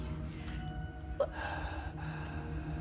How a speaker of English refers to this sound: Why are you heavy breathing over this?